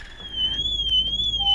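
A car alarm, going off since 4:30 in the morning, blares a high, continuous electronic tone that slowly wavers up and down in pitch over a low background rumble with no talking.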